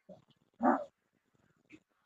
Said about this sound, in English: So much has gone on this week, though, as we have a dog barking.